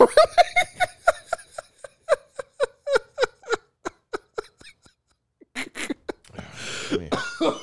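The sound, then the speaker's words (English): A long run of short, rhythmic throat-clearing grunts, then a brief pause and a few harsher coughs ending in a rough, noisy hack. Fairly loud, with no talking. “I gotta clear my throat here.”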